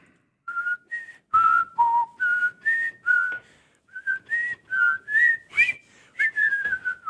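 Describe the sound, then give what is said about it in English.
Someone whistles a short tune, a quick run of clear notes rising and falling in pitch with brief pauses between phrases, and no talking. “just nay-nayed that whistle.”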